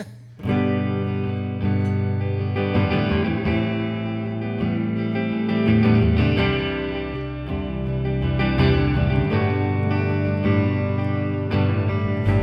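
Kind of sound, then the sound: sound effect, distortion effect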